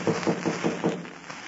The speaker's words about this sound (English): Before he could tell Burma that Hook was a clever, desperate criminal, there was a knock on the back door of the cabin.